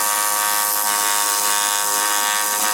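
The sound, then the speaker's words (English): A pneumatic air scribe chisel, with pressure applied at its tip, oscillates back and forth like a little jackhammer as it cuts through hard, concrete-like rock, making a steady, high-pitched, loud buzzing rattle that holds one continuous tone with a hissing edge and no pauses. “See that when I apply some pressure at the tip of this chisel, it's just oscillating back and forth like a little jackhammer, cutting its way through the rock.”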